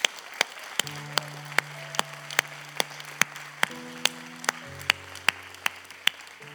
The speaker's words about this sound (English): And we're not all of heaven, but we sure can celebrate, because I've heard you root for your team. So you can do it. And so can we just give the Lord a clap offering?